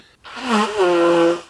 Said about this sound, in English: I blow my nose and sneeze really loud. Does that count? Sure. I mean, super loud, right? Yeah. Obnoxiously loud. Yeah, frighteningly loud. It fucking hurts. I lose my voice to that shit.